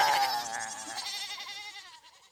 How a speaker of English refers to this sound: Hey, what the heck, more goats? Holy crap, where are all these goats coming from? Stop it. Holy fuck, goats! Goats, come on, stop!